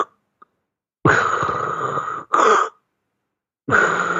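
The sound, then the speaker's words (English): A voice imitates sleep apnea breathing: a long, strained, raspy breath, a short choked gasp right after, then a pause and another harsh breath starting up. No words are spoken. “When you're breathing this way, you are stressing your body out, which is why people with sleep apnea and other sleep disordered breathing problems have hypertension.”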